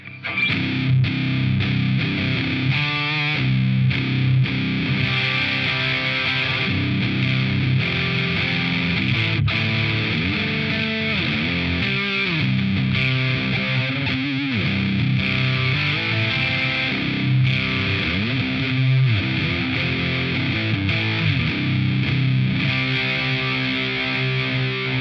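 Heavily distorted electric guitar played through a Friedman BE100 amp plays dense, sustained chords and chugging riffs, loud throughout, with no voices.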